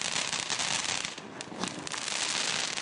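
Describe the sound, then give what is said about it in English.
A dense, continuous barrage of crackling and popping fireworks fills the scene, loud and unbroken, like many firecrackers going off at once with no clear pauses and no voices. “After a surge in noise complaints this year, Brampton City Council is moving to ban fireworks on holidays where they're currently permitted.”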